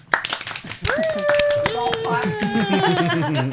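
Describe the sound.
A few people clap in quick, uneven bursts close to the mic, while voices call out and chatter over the applause throughout.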